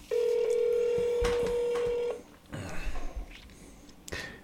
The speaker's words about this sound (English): It's our first phone call on the podcast.